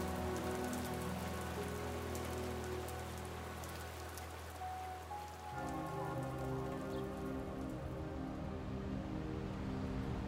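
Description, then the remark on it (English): Cold summer rain pours down steadily, a dense continuous patter on surfaces with a low rumbling undertone, holding an even loudness throughout with no voices present. “under this cold summer rain, damp and alone, Ruth Hannigan finally lets herself cry”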